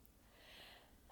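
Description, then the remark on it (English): A soft, breathy intake builds for a moment, then a small, high-pitched, mouse-like sneeze from a person made sneezy by a dog seen that morning bursts out sharply at the very end, with no talking. “I just do my, like, tiny little, like, mouse sneeze, my Disney princess sneeze, and then I'm usually good.”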